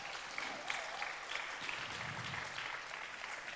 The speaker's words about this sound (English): If there's a mum around you and you know there's a mum, do you want to let's give them a big round of applause just one more time?